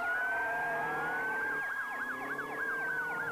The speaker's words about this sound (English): So one day, he was out walking the streets when a car came by, flying. And it was being chased by a police car, flying.